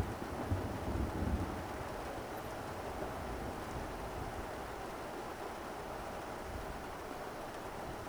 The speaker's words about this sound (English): And then, lashes of cold, heavy raindrops plummet from the sky.